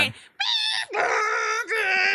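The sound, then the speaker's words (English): A voice imitates a fax machine tone: three loud, buzzy, sustained notes held one after another with brief dips between, the pitch shifting at each change. No speech, just the vocal tones. “That's what a fax machine sounds like? Yeah, that's what it sounds like.”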